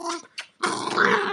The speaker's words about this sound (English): My dog is right here. Can you hear him?